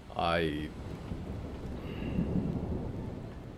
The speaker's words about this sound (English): Thunder rolls in the distance, and there are only a few clouds now